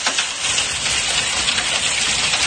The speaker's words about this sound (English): we're sitting in the living room and listening to a roof basically get hammered by hail.